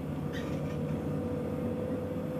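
Steady low rumble and hum of a Berlin Ringbahn S-Bahn commuter train riding along the rails, a continuous droning interior sound with a faint brief rattle, no voices.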